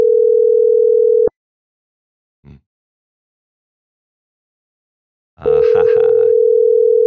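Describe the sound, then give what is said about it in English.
A steady, low telephone dial tone drones while calling someone back, stops abruptly, and after a pause with one brief click it returns, briefly overlapped by a short burst of louder, rougher sound. “Yeah, call him back one more time.”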